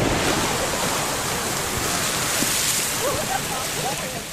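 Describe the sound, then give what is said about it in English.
The Old Faithful geyser erupts, shooting up boiling hot water with a steady, loud roar of rushing water and hissing spray that holds constant throughout, with faint voices murmuring in the background near the end. “Every 60 to 70 minutes, hot water shoots up from this spot.”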